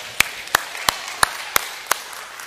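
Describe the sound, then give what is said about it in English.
Applause for summer in the form of six sharp, evenly spaced hand claps at a steady, unhurried rhythm, over a faint hiss, with no talking. “Can we get a round of applause for summer? Let's give it up for summer.”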